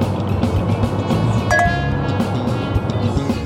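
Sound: wine glasses clinking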